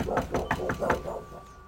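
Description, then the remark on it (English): A series of about six firm knocks on the door of a woman's house, in a steady, fairly quick rhythm and moderately loud, with no voices; nobody answers. “The woman doesn't answer, so they leave a note on her door handle.”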